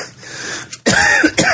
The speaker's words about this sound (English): Oh, and by the way, because you can hear we're both hacking and coughing.